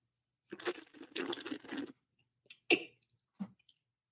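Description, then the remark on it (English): Wine slurped loudly to aerate it in the mouth, a hissy, airy suck lasting over a second, followed by a few soft mouth smacks and a gulp. No one speaks. “when you drink wine, you got to slurp it”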